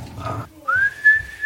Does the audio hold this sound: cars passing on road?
no